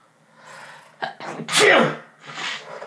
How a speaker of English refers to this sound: Yep, I sneezed.